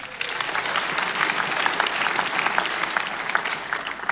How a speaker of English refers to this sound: This is a clap for him.